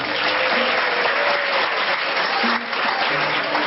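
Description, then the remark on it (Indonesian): Steady audience applause, a dense wash of many hands clapping at a fairly loud, even level for a few seconds, with faint voices mixed in underneath. “Tepuk tangan gak apa-apa.”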